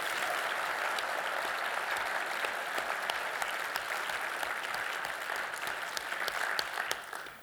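Sustained audience applause at a Big Screen Symposium session, a dense wash of many hands clapping steadily at an even loudness for several seconds before tapering slightly at the end.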